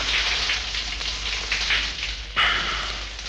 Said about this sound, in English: Finally, I crawled to the bathroom on my hands and knees, turned on the shower, crawled into the shower cubicle, clothes and all.